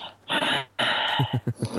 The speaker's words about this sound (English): Well, there's this thing that you do in yoga, which is called ujjayi breath. And it's basically just breathing really heavily, like...